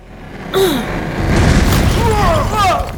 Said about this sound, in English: The door came off its hinges and flung Jerry and Gunter across the room.